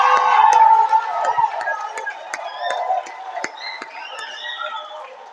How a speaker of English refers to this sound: Clap your hands and give the Lord a shout.